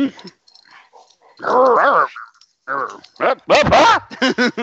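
A small puppy, Mika, growls and yips in bursts while playfully attacking its owner, a playful mix of rumbling growls and high-pitched whiny barks, with brief pauses between outbursts.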